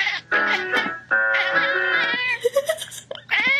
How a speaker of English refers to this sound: This opera singer is doing some practicing until her cat interrupts.